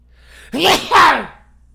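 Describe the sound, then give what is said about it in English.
A single loud sneeze in two quick parts, a sharp voiced intake followed by a forceful burst, standing alone against a quiet background. “I think I just popped a rib sneezing.”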